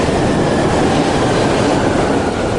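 A train rattles steadily along the rails, a loud, continuous rumble with a dense clatter of wheels, with no one speaking.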